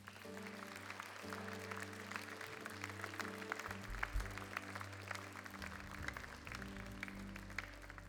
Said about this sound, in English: Men shall clap their hands. Say it with me. Men shall clap their hands. Clap your hands.